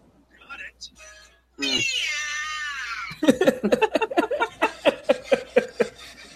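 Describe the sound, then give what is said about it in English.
A cartoonish voice lets out one long, drawn-out 'meow', loud, with the pitch sliding upward, followed by a run of quick, choppy vocal bursts in a steady rhythm. “Oh, back when he used to just like randomly say Meow all the time.”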